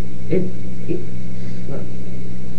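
Dogs give three short, high yelps and whimpers, spaced unevenly, over a steady low hum like a running car engine. No one speaks.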